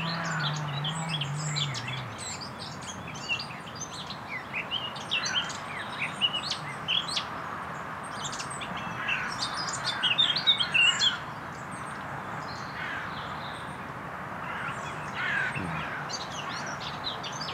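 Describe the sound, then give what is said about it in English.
A northern nightingale sings a busy, scratchy warbling song of rapid chirps and trills throughout in a little thicket by a stile, with tall trees and a stream, over a steady low background rumble of a chainsaw with a brief engine-like drone at the start. “AKA the Northern Nightingale.”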